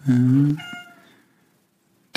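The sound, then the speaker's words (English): A female cat lets out one loud, drawn-out meow, its tone trailing off into a fading whine, followed by a short pause and a faint click. “Oh, I might just wait for the cat to finish. just let her finish what she's doing.”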